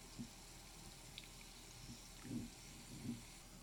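A can of Fresca is opened and poured into a glass already holding orange juice, heard faintly as a soft fizzy hiss with a few brief splashy bursts of liquid, quiet, with no one talking.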